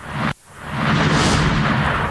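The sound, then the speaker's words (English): Two loud whooshes of rushing air in quick succession: a short burst cut off abruptly, then a longer sweep that swells and lingers, with no voices. “Whoosh, whoosh. That was a double whoosh.”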